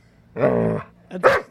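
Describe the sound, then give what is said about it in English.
A person imitates a dog: a drawn-out, growly bark followed by a short, sharp second bark, both loud, with no other sounds around them. “That's actually me barking.”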